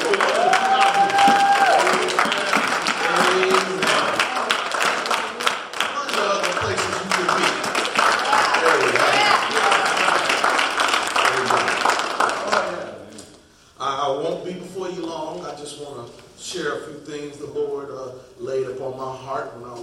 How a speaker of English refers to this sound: But they have come out, so let's give them a hand clap of praise.